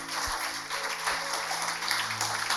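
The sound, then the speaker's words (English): A crowd claps steadily for a few seconds, a dense, even patter of many hands at moderate volume, with no voices standing out. “Clap for him, clap for him.”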